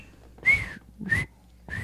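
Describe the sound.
Someone whistles a calling tune: three short, breathy notes, each sliding slightly downward in pitch, separated by brief pauses, with no talking.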